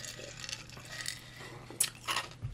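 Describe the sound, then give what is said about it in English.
Crunching of small pieces of aerated nugget ice from an Opal ice maker being chewed, with soft squishy crackles building into a couple of louder, sharper crunches near the end. No one speaks. “Now, I had one of my viewers take a jab at me chewing ice. I will have to say, this ice is nugget ice.”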